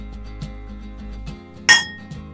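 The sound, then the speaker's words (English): Beer glasses clink together once in a toast, a bright, ringing chink that fades quickly, preceded by a few soft knocks over a low background hum. “Cheers to today and taking risks.”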